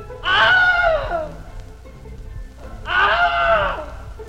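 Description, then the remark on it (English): Two loud takes of the Wilhelm scream, the film sound effect first used in 1951, each a sharp cry that slides downward in pitch, separated by a couple of seconds of quiet hiss with no talking. “And we've actually used these, all three of these last ones, as sort of the official Wilhelm.”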